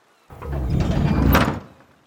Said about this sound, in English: And this wall of stone moves like a door.